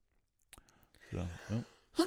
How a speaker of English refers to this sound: I don't know why I turned away from the mic there when you sneezed.